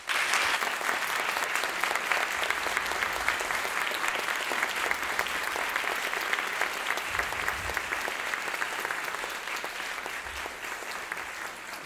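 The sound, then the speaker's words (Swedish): Sustained audience applause, a dense steady clatter of many hands clapping at an even loudness for about twelve seconds, tapering slightly toward the end, with no talking, as speakers are handed the stage before an audience of students in Lund. “En varm applåd.”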